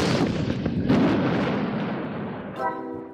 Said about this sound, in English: or we'll cause an avalanche with a giant cannon.